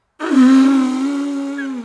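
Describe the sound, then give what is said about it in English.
A person imitates an elephant with one loud, sustained, buzzy trumpeting call that holds a steady mid-low pitch for about a second and a half before trailing off. “That's my monkey. Here's my elephant.”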